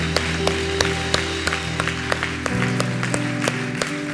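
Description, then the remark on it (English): An audience applauding, with sharper claps falling into a steady beat over sustained, organ-like keyboard chords that shift lower partway through. No one speaks. “Come on, let's put our hands together.”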